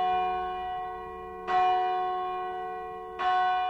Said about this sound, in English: the Church of St. Giles Chollerton is ringing its bells for Sunday services.